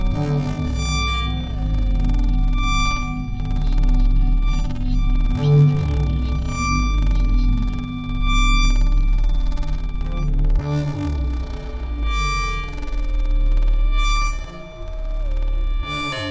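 A dense, atmospheric drone of steady ringing feedback tones over a rumbling, distorted low end, holding at a constant loud level throughout with no voices.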